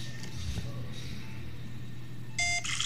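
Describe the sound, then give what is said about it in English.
A short electronic video game beep from an electrical wiring task sounds near the end, bright and tonal with a second chirp right after, over a steady low background hum. “Sounds like you are, because it sounds like you're doing electrical. It sounds like you're doing wires.”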